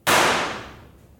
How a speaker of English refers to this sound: As I left the warehouse, I heard a single gunshot.